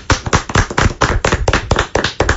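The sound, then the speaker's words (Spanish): A burst of audience applause: many hands clapping in a loud, uneven patter of sharp claps that carries on steadily with no voices. “Un aplauso.”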